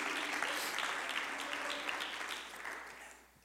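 An audience claps their hands in a dense, steady wash of applause that holds strong before gradually fading out toward the end.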